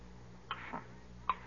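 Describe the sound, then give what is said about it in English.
A big clock ticks slowly, two distinct, fairly crisp ticks under a second apart, heard alone over a faint low hum with no one speaking. “Well, here I sit by the big clock, just as my father sat 30 years ago.”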